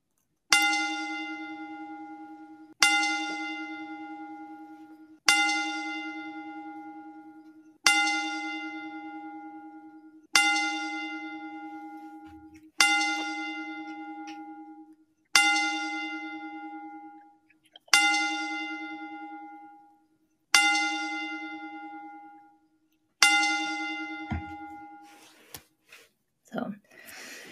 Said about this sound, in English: We just want to go ahead and give them the 10 bell salute. So go for it.